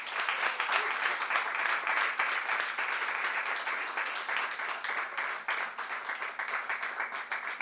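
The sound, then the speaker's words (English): An audience applauds to welcome Rolling Stone TV critic Alan Sepinwall and a second guest, dense overlapping claps forming a sustained, even wash of sound that holds at a fairly constant loudness for several seconds without speech. “Please join me in welcoming Alan and Justin.”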